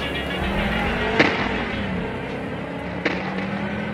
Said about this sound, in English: the stolen car speeds away, disappearing behind a cloud of dust.